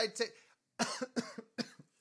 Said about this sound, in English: You're coughing because it's BS and you're allergic to it.